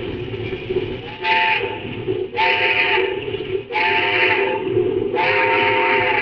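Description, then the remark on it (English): A steam locomotive whistle sounds at a red signal in four loud, evenly spaced blasts, each a bright harmonic wail, over the constant heavy rumble of a moving train. “Sure, I'll give him the whistle.”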